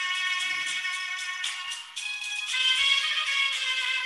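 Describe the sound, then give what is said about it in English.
A phone ringtone plays on its own, a steady electronic melody of bright layered tones that shifts pitch partway through and continues at a constant, fairly loud level without any talking. “is that your ringtone?”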